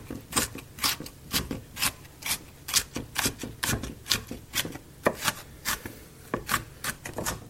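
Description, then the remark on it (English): Crisp, crunchy knife chops through green capsicum, a quick irregular series of sharp cuts with wet crackly bursts, repeated steadily with no talking. “Here's some crunchy capsicum chopping ASMR for you.”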